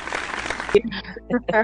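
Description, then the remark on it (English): A short burst of dense hand clapping, given in appreciation of listeners, fills the first moment before stopping abruptly as a person starts talking. “Again, we're clapping for you.”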